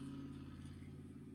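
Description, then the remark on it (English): A Harley motorcycle engine rumbles outside in front of a house with a deep, throaty, steady drone of low harmonics and a slight pulsing throb, running throughout with no one talking. “Yeah, Jesus, they need to tune that Harley down.”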